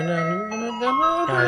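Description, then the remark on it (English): A tinny, electronic ice cream truck jingle, the Turkey in the Straw tune, plays a simple melody of steady, stepping notes, loud with no voices over it. “They're no longer going to have the racist fucking turkey in the straw song.”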